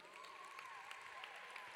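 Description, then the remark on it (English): An audience claps in a steady, dense wash of applause, fairly faint, with a wavering sung or sustained voice running over it. “Even Angela, who is on honeymoon, is clapping.”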